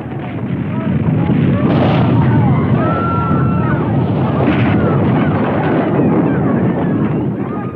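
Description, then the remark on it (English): A deep, continuous earthquake rumble roars steadily for several seconds, loud and heavy in the low end, with crackling, grinding debris-like noise layered over it before easing slightly at the end. “Yet, giant tremors can still strike suddenly and without warning.”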